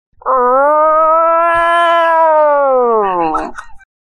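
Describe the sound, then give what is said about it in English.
A person imitates a deer call with one long, loud, nasal bleat that holds a steady pitch for about three seconds before sliding downward and cutting off. “20 unique deer calls.”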